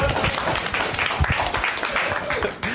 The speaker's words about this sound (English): He needed applause.